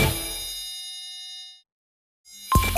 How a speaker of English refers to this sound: The phone is ringing, can't you hear it? Someone's on the line for you.